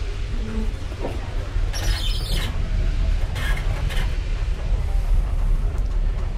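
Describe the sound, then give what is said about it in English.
Two steam locomotives pull a heavy train slowly along the platform out of Crewe station, a steady low rumble broken by a few harsh hissing bursts of steam. No one speaks. “And we're off, slowly inching our way down the platform, and now foot by foot, yard by yard, as the locomotives pull this heavy load.”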